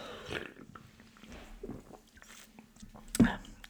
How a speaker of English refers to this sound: Let me just have a little sippy sip.